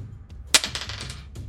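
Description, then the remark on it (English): Dice clatter onto a hard tabletop with a sharp first impact, then a quick run of tumbling clicks that settle within a second, followed by one more faint tap. Fairly loud. “Whenever you roll a 1 on one or more dice, you need to re-roll those dice.”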